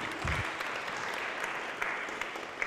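An audience claps steadily in applause for a flute teacher, many hands blending into a dense, even patter of crackling claps with a few sharper hits, sustained throughout with no talking.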